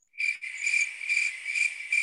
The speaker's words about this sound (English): We're hearing crickets. We can't be hearing crickets out here. We can't be hearing crickets like that.